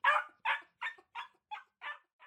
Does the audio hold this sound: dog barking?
yes